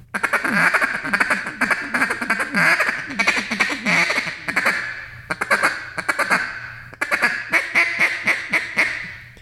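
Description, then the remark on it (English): A double reed duck call, the Icebreaker model, blown loud, giving rapid runs of raspy, rattling quacks in three bursts separated by short pauses, with a faint low hum underneath. “So you can hear that it sounds just like a duck. And that's a double reed.”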